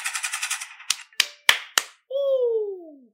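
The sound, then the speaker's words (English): Sound effects: a quick rattling run of hand-clap pops gives way to four loud, sharp AK-47 gunshot bangs about a third of a second apart, followed by a long descending whistle, with no talking. “Give another hand clap for y'all out there. We're going to hand clap. We're going to fucking gunshots.”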